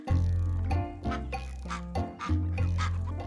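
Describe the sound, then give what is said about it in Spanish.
Ducks or geese quack loudly, a steady string of nasal, honking calls that overlap and repeat in quick uneven bursts, with no one talking. “También teníamos que saber cuáles peces podíamos pescar y cuáles no, y cuándo era la temporada para criar gansos y patos.”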